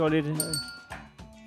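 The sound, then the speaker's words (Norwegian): Glasses clink together in a toast, a few bright ringing taps that linger briefly, following a voice speaking at the start. “Det er meget pænt glas.”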